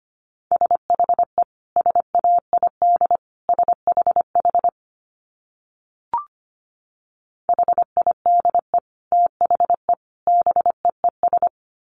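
Rapid Morse code at about 25 words per minute: a single steady mid-pitched tone keyed into crisp dots and dashes, in two long runs separated by a pause with a faint click, no voices.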